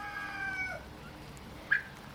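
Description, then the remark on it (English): Eleven poultry calling from a pen, the bigger ones toms and the plainer ones females: drawn-out, wavering cries fill the first part, then a single sharp, louder squawk rings out near the end over a quiet background. “we have 11 of these little guys. The bigger ones are the toms, and the more plain ones are the females.”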